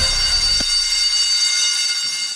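A loud, steady electronic alarm blares continuously for a couple of seconds, harsh and buzzing with a bright, high-pitched edge, and no voices.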